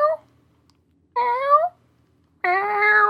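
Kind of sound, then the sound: vocal imitation, person imitating cat meows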